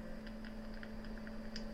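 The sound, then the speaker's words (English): Soft, irregular clicks as a pet named Jesse presses computer keyboard keys, about eight taps spread unevenly over a steady low electrical hum, with no one speaking. “Look, he's typing.”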